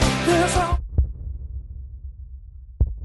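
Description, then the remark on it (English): A brief burst of music cuts off, then deep, booming kick drum thumps land slowly and sparsely, like a heartbeat, each low hit ringing out before the next. “I first stole the idea of playing a kick drum to sound like a heartbeat”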